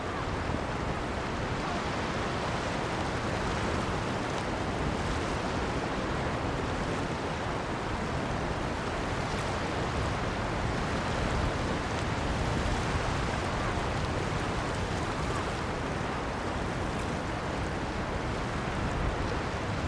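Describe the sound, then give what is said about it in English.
Sea waves wash steadily onto a sandy, seaweedy, pebbly beach with rocks on the Kent coast in a continuous, fairly loud roar of surf, with no clear breaks between breakers and no voices. “You'll join Liv now for a walk along the Kent coast”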